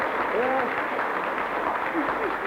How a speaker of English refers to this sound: Give her a clap. Come on.